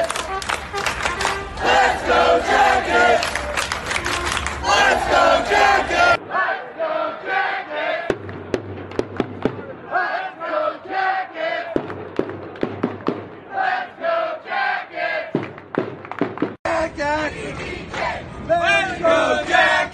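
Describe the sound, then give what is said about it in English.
A loud crowd of marching hockey fans, the Union Blue Soldiers, chants together in rhythmic unison while marching to Nationwide Arena to cheer on the Columbus Blue Jackets, broken into several abruptly cut segments from different marches, with occasional deep thuds like drumbeats under the voices. “Here's a video, a quick little short video from different marches we've had.”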